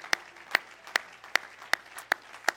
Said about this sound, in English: Everybody clap your hands to the Lord tonight.